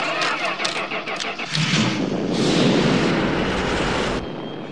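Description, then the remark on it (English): A car engine in a movie sound effect, sounding like a V6, cranks, catches and revs up loudly, a deep steady growl that swells before cutting off abruptly near the end. “Like it's the same sound effect, and when it runs, it's like a V6 engine, and like Butcher's like, oh, listen, let girl purr”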